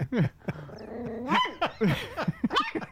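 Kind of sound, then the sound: animal, dog barking and growling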